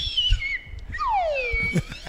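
A slide whistle plays two sliding tones, a short high dip followed by a longer swooping descent, fairly loud and close with no talking over it.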